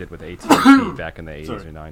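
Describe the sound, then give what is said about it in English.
A short, sharp sneeze bursts out midway through, loud and close, while a man keeps talking steadily before and after it. “Yeah. Also, Gesundheit.”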